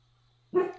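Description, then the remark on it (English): A pet dog barks twice, a loud sharp bark followed quickly by a shorter second one, after a moment of near silence with a faint low hum. “Well, on that note, I think my dogs are insisting that we wrap it up.”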